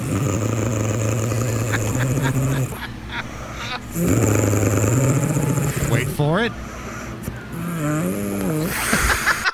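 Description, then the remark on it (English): A woman snores loudly in rumbling snores that come in several long, growl-like stretches, with a wet, sputtering burst near the end. A voice speaks briefly between them. “It sounds like a dog growling, and then a wet fart.”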